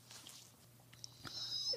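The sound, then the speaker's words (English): A dog whimpers quietly, a thin high-pitched whine rising near the end and trailing off, faint, over a low steady background hum. “Dog. What do you want, Pooch?”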